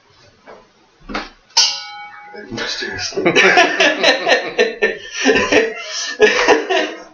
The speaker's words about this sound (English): And yes, that is a ring bell that I'm ringing. Actually, it's an ashtray that I'm hitting with a letter opener. But you know, it's a good sound.